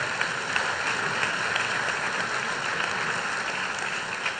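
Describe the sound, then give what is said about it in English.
An audience at a church service claps steadily for the speaker's visiting parents, many hands blending into a dense, hissing wash of applause that holds an even loudness throughout, with no voices standing out. “They are clapping at what a fine product you put out, right?”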